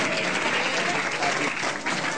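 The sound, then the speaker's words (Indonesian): Sustained applause from a crowd of children in a mosque, a dense steady patter of many hands clapping at an even loudness for a couple of seconds with no voices standing out. “Ustaz, kok di masjid tepuk tangan?”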